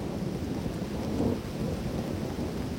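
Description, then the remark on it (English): A deep, rolling rumble of thunder over steady, heavy rain, swelling briefly partway through and then settling back into a dense, continuous downpour. No voices are heard. “Ooh, that was a loud one. Scary out there. Raining cats and dogs, man.”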